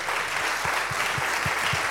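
A crowd applauds the men committed to their families. The applause is steady, a dense, continuous wash of many hands clapping at an even loudness, with faint low thumps pulsing underneath at a regular beat.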